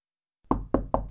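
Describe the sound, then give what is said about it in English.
Three firm knocks on a door by someone standing outside, in quick succession, each a solid, resonant thud with a short decay, fairly loud after a moment of silence. “I'm outside. Open the door.”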